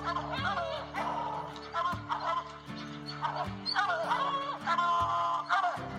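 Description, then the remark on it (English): A hunting hound bays at a bear in long, drawn-out howls that rise and fall, repeating several times over steady, loud background music with sustained low tones. “Good dog, get that bear. Get that bear in here.”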